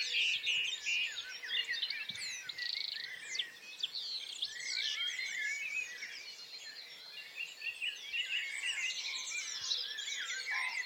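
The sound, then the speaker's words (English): A dense chorus of many birds chirping and singing at once, with overlapping trills and high tweets filling the air continuously, with no talking. “In an hour's time, these birds will be going around their daily business. And some will sing.”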